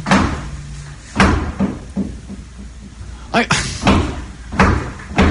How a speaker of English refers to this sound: What is this, cupboard door or something? Yeah, the ghost is slamming things around.